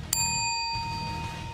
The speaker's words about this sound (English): Did you guys hear that we got a new bell in the studio? I just bought it from Office Depot yesterday. That's awesome. Would you like to hear it again? Cool. Yes. Here we go.